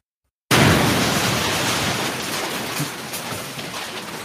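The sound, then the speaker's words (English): After a brief silence, a nuclear explosion sound effect bursts in suddenly as a loud, dense roar of noise with low rumble, sustaining and only slowly fading over several seconds. “Yeah, there's a big old nuke right here. Oh, yeah, it's got some bass.”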